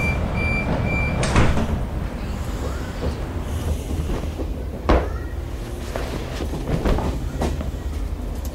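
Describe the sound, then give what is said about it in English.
Steady rumble of a train with rattling carriages, broken by a couple of sharp clunks as the doors slide shut, one early and one midway, with fainter knocks after. “Doors closing. Please stand clear.”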